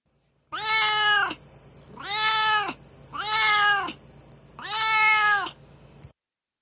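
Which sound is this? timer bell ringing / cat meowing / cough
cat meowing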